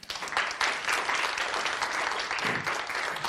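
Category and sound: crowd, audience applause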